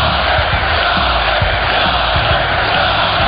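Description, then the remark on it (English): An arena crowd at a Penguins game against the Kings cheers in a loud, unbroken roar during Jagr's jersey number retirement ceremony, with scattered shouts and whoops rising out of the dense wash of voices for the whole stretch. “To be here with you, hearing the cheers, I don't even have to score.”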